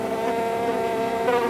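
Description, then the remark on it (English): A fly buzzes steadily, a continuous droning hum with a slight wavering in pitch as it hovers, heard alone without any voices. “And in defiance, I buzz around. I jump from my perch and I fly around into the faces of my bespoke observers.”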